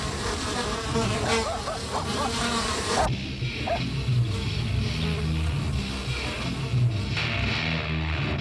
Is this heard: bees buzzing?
yes